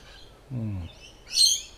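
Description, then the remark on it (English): Outdoors, a bird gives a low, hoarse hooting call, then after a short pause a bright, high chirping burst follows. Two brief calls, with no talking. “I'm seeing birds I'd not seen up in Collingwood anyway.”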